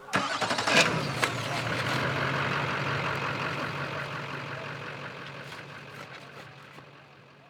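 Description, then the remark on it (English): A few clunks and bumps as trucks are loaded after dark, opening into a truck engine starting up and running steadily, its rumble slowly fading toward the end as the vehicle seems to pull away. No voices. “They set out the food and sit around in a circle, chatting, gossiping, and poking fun at one another until it's well past dark and it's time to quench the fire, load up the trucks, and leave.”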